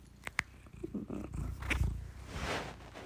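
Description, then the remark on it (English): A cat purrs in a steady, low rumble that swells and eases, with a few small clicks and rustles near the start and no talking. “I love it when you're purring.”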